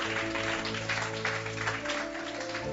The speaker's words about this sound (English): And can I receive a mighty hand clap to the glory of the Lord?